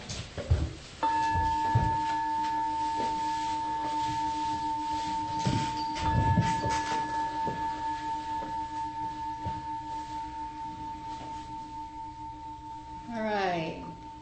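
A meditation bell is struck once to begin a Zen meditation, and its clear, steady tone rings on for over ten seconds, slowly fading. Soft rustles and a brief sweeping sound occur near the end.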